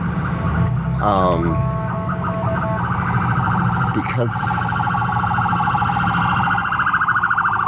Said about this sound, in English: Oh boy, okay. Let me let this ambulance pass. In our area, whenever anyone calls 911, they send the fire truck and the ambulance and the whole kit and caboodle.